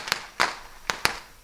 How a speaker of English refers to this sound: And all over it are rockets and fireworks shooting from the gravesites. After the fireworks set off, that whole gravesite was just covered in smoke.